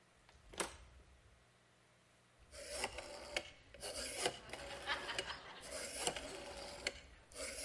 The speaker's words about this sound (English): All right, so it's a rotary phone.